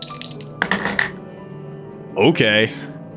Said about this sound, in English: All right, I'm rolling those Tracana dice.